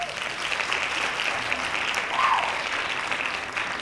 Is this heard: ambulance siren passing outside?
no